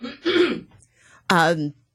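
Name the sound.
cough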